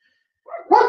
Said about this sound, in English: Hey, no barking, dogs.